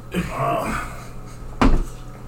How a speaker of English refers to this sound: I'll just say that a great, massive cat came over and knocked over the tower a little bit. Yeah. Hit the tower a little bit. Boom.